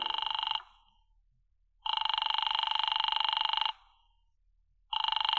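A telephone rings over and over with no one picking up, a call to Diamond's office that goes unanswered: long buzzing rings, each about two seconds, separated by short silences, fairly loud with no voices.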